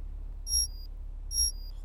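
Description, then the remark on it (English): An electronic internal conduction alarm goes off at 5:35, beeping twice, each high-pitched tone ringing for under half a second with a short pause between, over a steady low hum. “This is your internal conduction alarm. It is 5:35. Alarm off, please.”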